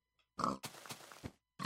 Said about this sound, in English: Ooh, that was a moist pig.